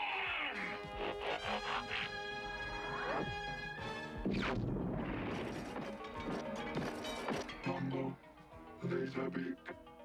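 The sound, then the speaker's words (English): Fight sounds from an Autobots cartoon: a dense flurry of metallic clinks, clangs and crashes, loud and overlapping, with sharp bright impacts and ringing tones, plus brief voices and effects mixed in. “Hear all the clinking noises? I think that's the fighting.”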